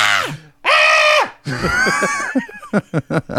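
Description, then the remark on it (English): A person lets out a loud, sustained scream, followed by wavering vocal cries that break into short, rhythmic bursts of laughter. “Every time when there's a lull, I'm just gonna scream.”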